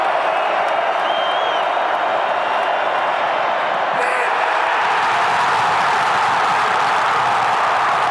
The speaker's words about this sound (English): Listen to this crowd as Bob Spillane comes up with a pick at the end of this to close out this football game.